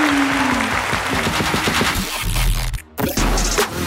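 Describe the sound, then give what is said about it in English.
A burst of loud, dense applause played on the audio, rapid crackling claps, briefly cutting out near the end before resuming, with no voices heard. “do a little applause, like do it on the audio.”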